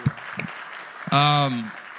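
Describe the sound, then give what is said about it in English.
Steady crowd applause fills the whole clip, a dense patter of clapping given to the Lord for the Roe versus Wade reversal, with a sustained whoop or cheer ringing out over it for about half a second midway. “So if we give him a round of applause for that.”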